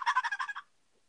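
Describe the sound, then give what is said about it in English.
A turkey gobble imitated on a Woodhaven Real Hen Cherry game call by moving its lid: a quick rattling burst of about eight rapid pulses lasting just over half a second, followed by silence. No one speaks. “And a lot of times, and by the way, this is just a Woodhaven real hen, Cherry, but a lot of times you can do the gobbler yelps and just gobble.”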